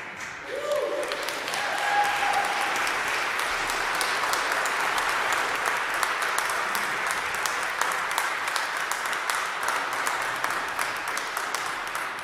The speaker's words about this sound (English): So everybody who just applauded, Father Mike Smith, the Bible in 1 year. Put your life where you just applauded.